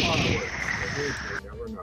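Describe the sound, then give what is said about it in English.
A voice imitates a gunshot with a sustained breathy hiss lasting well over a second before it cuts off sharply, leaving a faint murmur of background voices. “Because when you hear a gunshot, it cuts through the air continuously until, you know, some point.”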